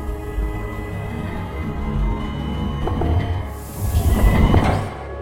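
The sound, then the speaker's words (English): A heavy separation door of a chamber, triggered by a release mechanism, slides open with a loud pneumatic hiss that swells and builds speed, rising over a low, steady mechanical hum before trailing off. No one speaks. “there was a hiss as the separation door opened, slowly at first, but soon gained speed and revealed the death inside the chamber.”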